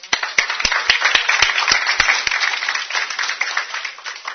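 Audience applause: a dense wash of many hands clapping, with a few sharp, distinct claps standing out in the first two seconds before it settles into a steady patter, applauding a participant who gave an example of a Bible story.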